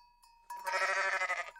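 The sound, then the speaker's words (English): A single loud, wavering sheep bleat lasting about a second, clear, with a faint steady tone humming in the background. “Somebody must be counting sheep around here. Where did those sheep go?”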